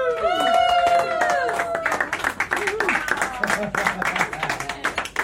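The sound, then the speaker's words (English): An audience claps and cheers loudly and steadily for a Halloween stand-up comedy act by a performer billed as a werewolf, with a rising howl-like vocal wail over the start before the noisy applause continues alone. “Clap with trepidation, ladies and gentlemen.”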